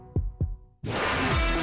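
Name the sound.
heartbeat sound effect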